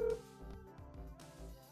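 A phone call to a guest ringing out, with a short electronic tone at the start followed by a steady, buzzy tonal hum, fairly quiet and heard alone with no one talking.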